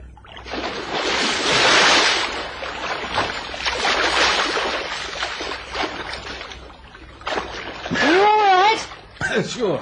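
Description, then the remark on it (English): A man dives into the sea at night with a loud splash, followed by sustained churning water and surf noise; a brief wavering, voice-like sound rises near the end. “Oh, so that's why you're going to dive into the sea?”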